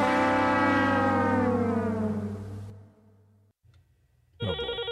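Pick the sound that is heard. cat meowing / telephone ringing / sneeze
telephone ringing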